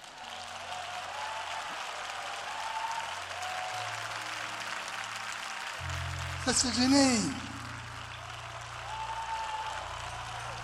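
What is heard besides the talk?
audience applauding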